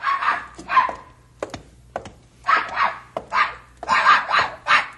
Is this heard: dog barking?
yes